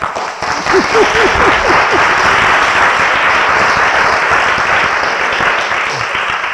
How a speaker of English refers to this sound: Are you still rejoicing? Amen. Are you still clapping your hands?